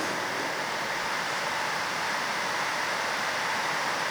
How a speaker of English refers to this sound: God, we thank you, Lord. As the rain falls outside, Lord, we know it's you working.